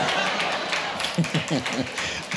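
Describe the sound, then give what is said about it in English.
Three people from the barber shop clap in a loose, uneven patter, a thin scattering of applause rather than a crowd, with voices murmuring over it partway through. “Got three people from the barber shop right there applauding for whatever reason.”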